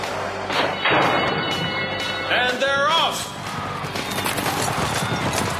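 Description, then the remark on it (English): Racehorses burst from the starting gate with a rush of pounding hooves and thuds over a loud, roaring crowd. A brief wavering tone sounds midway through the busy, dense din. “The horses are at the gate.”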